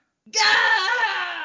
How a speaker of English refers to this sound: Gah! A Scottish scream. That was my Billy Connolly scream. Gah!